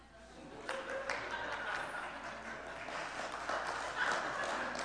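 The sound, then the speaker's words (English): An audience claps steadily, a dense patter of many overlapping hand claps that holds at an even, moderate loudness for about five seconds with no clear rhythm. “Please don't clap.”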